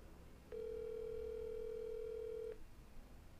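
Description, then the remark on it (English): A single steady electronic ringing tone on a phone line sounds for about two seconds and then stops, with faint background hiss and no one picking up or speaking. “Yeah, he's not answering.”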